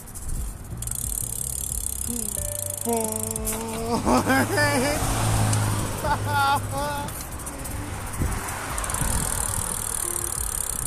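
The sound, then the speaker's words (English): A bus drives past, its low engine rumble swelling over a few seconds and then fading, amid steady street noise and some brief vocal sounds. “Suck you, bus.”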